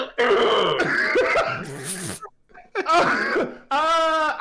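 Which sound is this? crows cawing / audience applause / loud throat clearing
loud throat clearing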